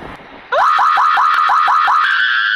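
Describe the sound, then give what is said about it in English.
A woman's sudden, piercing scream, played from a recording, wavers in quick rhythmic pulses before stretching into a long sustained shriek, loud, with no talking around it. “That scream of hers is crazy, man.”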